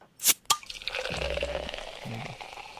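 Chardonnay wine pours into a glass, starting with two sharp clinks, then a steady liquid stream whose pitch climbs as the glass fills, with brief gurgles near the end.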